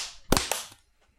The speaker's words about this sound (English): Clap. Your clap was 5 seconds behind. Wait. The actual noise, the sound.